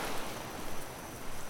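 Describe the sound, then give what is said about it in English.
A steady, dense rush of water pours continuously out of opened doors onto a lawn, a broad hissing wash with no pauses, fairly loud, and no voices. “I'm opening the doors to let the water out.”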